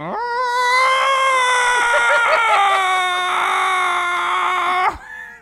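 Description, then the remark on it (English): A person imitates a Bigfoot call with one loud, sustained, high-pitched wailing howl. It wavers a little in pitch for about four seconds, then cuts off abruptly. “It's a very ostrichy Bigfoot.”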